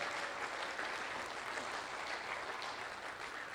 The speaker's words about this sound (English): Can we just real quick, a nice round of applause for all the young men that were willing to get up here and do this morning?